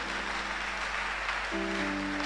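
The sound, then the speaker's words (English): Scattered clapping from a crowd, a steady patter of uneven hand claps, with a sustained low keyboard or organ tone entering about halfway through. “I thought you all clap. Only some are clapping.”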